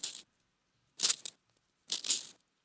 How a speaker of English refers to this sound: Hold on. Sharpening a pencil.